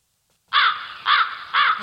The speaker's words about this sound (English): A crow. It's a little creepy.